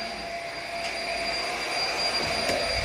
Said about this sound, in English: Sorry for the vacuum cleaner. Look at you. Vacuum.